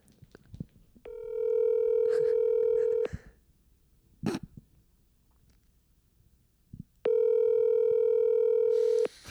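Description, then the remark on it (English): An outgoing phone call's ringback tone sounds twice, each a steady two-second electronic tone separated by a long pause, loud and clear, with a few faint clicks and bumps in the gap. “I'm not going to prank call. I'm just going to say what's up. He's not going to answer.”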